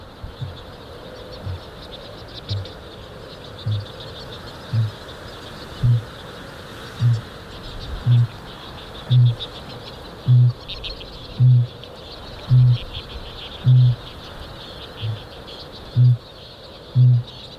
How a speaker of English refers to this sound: Kākāpō, the booming of the male kākāpō is a little bit like the heartbeat of the land.